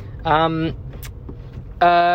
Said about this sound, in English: Well, they can't get to us. We're in a car.